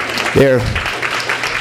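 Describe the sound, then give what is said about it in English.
A crowd claps steadily for the speaker's children who are present, in a dense, diffuse patter, with a brief voice or cheer rising near the start before the applause carries on. “Y'all got to clap for.”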